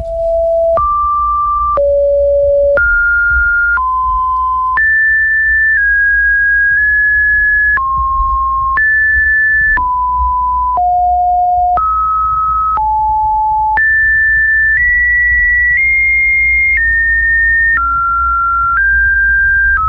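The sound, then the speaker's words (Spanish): A steady run of electronic beeping tones, each lasting about a second and jumping up and down in pitch like coded signals, sounding over a constant low rumbling hum. “Vea que parece código Morse, cualquier persona diría es código Morse”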